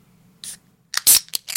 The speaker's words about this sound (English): Can I crack this beverage? I'm thirsty as fuck.